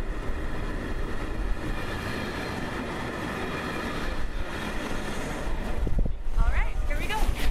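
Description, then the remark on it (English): A steady rumble of an overnight train rolling along the rails on the 19-hour journey to Kiruna, Sweden, with continuous clatter and a faint mechanical whine, and muffled voices briefly rising near the end. “Kelly and I opted for the train ride up. It's a 19-hour overnight journey.”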